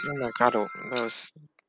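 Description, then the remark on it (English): One of several phone alarms, set for about 12:01, rings out in a short series of bright, tonal electronic notes over a steady high hum, then cuts off abruptly into near silence. “I have an alarm going off at 1201, 1202.”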